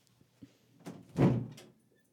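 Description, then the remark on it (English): A door is opened to let a pet named Picard into the room: a faint click, a brief creak, then a louder low thunk as it swings, fading out quickly. No one speaks. “Listeners, you're going to hear me open the door for this seems to be the weekly letting Picard in the room thing.”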